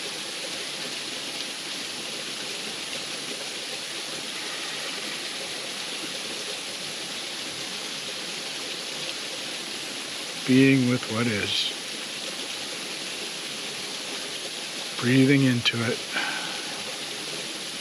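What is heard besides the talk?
creek water flowing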